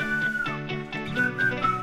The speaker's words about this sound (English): They're both whistling.